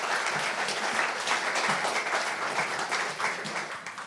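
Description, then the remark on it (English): An audience applauds a speaker, John, steadily, dense overlapping claps forming a continuous wash of sound that holds for a few seconds before beginning to thin out at the end. “Let's give John a round of applause.”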